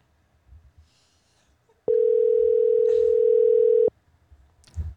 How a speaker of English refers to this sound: Phone lines are open. For some reason, it's doing reverse ringing.